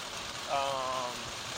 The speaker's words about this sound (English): yes, it's raining. It does make me think about new days and forgiveness. And then today, I wish it wasn't happening while I was driving.